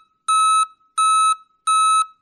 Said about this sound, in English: The city of Ottawa is changing the sounds its snow plows and trucks make when they back up. Instead of the beep, beep, beep, it's more like static. Listen to this.